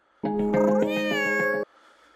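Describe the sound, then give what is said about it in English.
A robotic companion pet toy cat lets out one loud, drawn-out meow lasting about a second and a half, clear with a slight rolling wobble, then fades to faint background hiss. “Give the gift of joy and comfort with Joy for All companion pets. That's actually the sound of it.”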